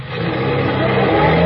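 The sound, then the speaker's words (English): A heavy bus engine revs steadily as it pulls away, a loud, continuous low rumble that builds slightly in intensity with no voices over it. “This is a nonpartisan, patriotic bus service. Here we go.”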